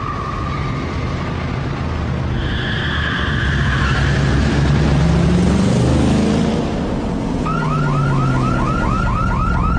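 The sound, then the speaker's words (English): A car alarm blares continuously, cycling through different siren tones and ending in a fast, repeating warble, loud against a rumbling background of traffic noise. “Sounds like he forgot about his alarm system.”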